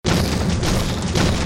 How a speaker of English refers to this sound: But the giant just took his big foot and he banged on the ground.